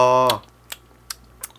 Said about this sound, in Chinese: 他在吃东西。 这个节目可以走 ASMR 路线呢、欸。 你再一次， 因为咀嚼声可能是有些人的 trigger。